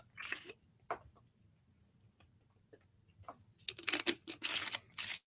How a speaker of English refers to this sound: Let me get a sip of this old green liquid.